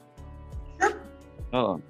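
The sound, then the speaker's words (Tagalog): A dog barks twice, two short, sharp yaps about three-quarters of a second apart, clear, with soft low thumps in the background. “Oh. Parang aso eh.”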